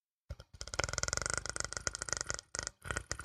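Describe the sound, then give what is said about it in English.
A person imitates an alien creature with a throaty, rattling purr-growl, a rapid string of raspy pulses lasting about three seconds with a brief break near the end. No words are spoken. “It kind of sounds like a kitty purring.”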